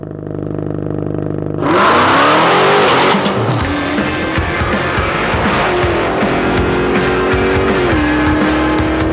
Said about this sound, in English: A little exhaust mashup this morning, huh?